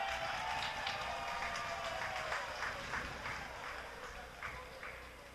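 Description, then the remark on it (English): Baseball stadium crowd applause for a fan catching a foul ball in the stands: a steady wash of many hands clapping, with scattered sharper claps poking through. It holds a fairly even, moderate level for several seconds and eases slightly toward the end, with no voices. “You hear the applause as a fan able to catch that ball.”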